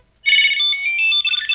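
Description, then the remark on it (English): A Tile Bluetooth tracker attached to keys, triggered with the find function of the Tile phone app, rings out with a loud, bright, high-pitched melodic chime, starting abruptly after a brief silence and continuing steadily with no one talking. “I go to the Tile app, go to my keys and say find.”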